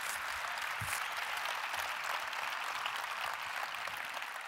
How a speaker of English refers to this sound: So good luck. Let's clap it up. Thank you.